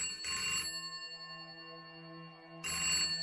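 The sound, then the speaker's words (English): A telephone rings at 6 in the morning in two bright electronic bursts, the first from about 0.2 to 0.7 seconds and the second starting near 2.6 seconds, with a sustained tonal hum between them. No one speaks. “Abacha's personal doctor was woken abruptly by a phone call at 6 in the morning.”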